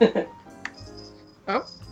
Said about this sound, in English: By the way, the podcast has just been joined by Luna the cat. So if you hear any little jingling bells, it's not angels getting their wings, it's Luna's collar.